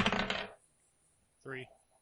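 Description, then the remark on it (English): Dice rolled for a flight check clatter and rattle across a hard surface for about half a second, then a pause and a short rising tonal blip; no one speaks. “And then I need all of you guys to roll me a flight of three, because you guys have advantage”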